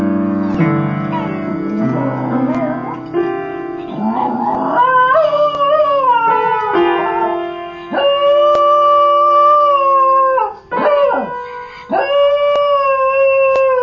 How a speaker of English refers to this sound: This is a very cute dog, thanks to Poke My Heart, which posted this on YouTube. This is a cute dog that not just sings, oh no, this is a dog that sings and plays the piano. Check this out.